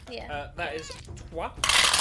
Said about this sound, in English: Oh, no, all dice are going everywhere.